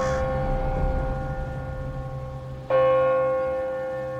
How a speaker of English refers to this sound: As they passed out, the ringers stooped. There were 6 of them, and then, on the ears expecting the gay wedding peal, came the slow tolling of the passing bell.